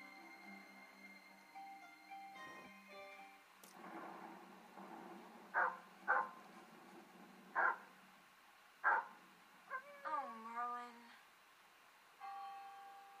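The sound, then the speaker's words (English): A shaggy dog barks in a series of short, sharp bursts, spaced a second or so apart, over a background of sustained musical tones and bell-like chimes. “Looks like the shaggy dog.”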